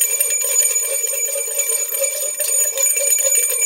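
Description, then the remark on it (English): A bright, high bell rings loudly and steadily for Two Bell Tuesday, its shimmering tone sustained throughout, with a second strike renewing the ring partway through. No voices. “It's a Two Bell Tuesday.”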